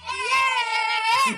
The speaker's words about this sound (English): Give us a cheer then from the boys. Lads, one more cheer for the lads on the radio.